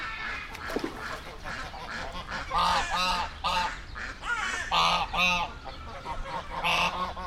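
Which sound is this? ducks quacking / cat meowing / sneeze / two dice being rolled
ducks quacking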